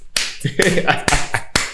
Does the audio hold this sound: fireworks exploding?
no